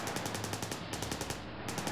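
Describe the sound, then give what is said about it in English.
Rapid, sustained Thompson machine gun fire from a line of cars driving past a restaurant, shooting at Capone: a steady, fast stream of sharp cracking shots, loud and unbroken for the full two seconds, with no voices. “They listened in terror as each car drove past, Thompson machine guns blazing.”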